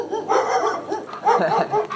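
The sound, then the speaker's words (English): A dog behind a screen door barks in a quick, excited series of yaps and woofs, fairly loud, with no one talking, heard during an evening walk at Spruce and Hewitt streets. “A lot of people's screen doors are the only thing keeping their dogs between away from the street, I guess, and me and my dog.”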